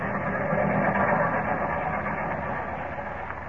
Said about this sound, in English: The 941, you'll see. 941 arriving on Track 6. 941 on Track 6. 941 arriving on Track 6.